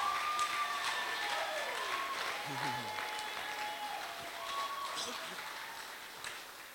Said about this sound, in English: Why don't we right now give God a shout and a hand, a clap of praise if you believe it. Come on, praise him if you believe it.